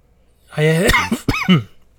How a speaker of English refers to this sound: I'm going to apologize for coughing in your guys' ear. I'm still kind of getting over being sick. So I will try to keep it down to a minimum.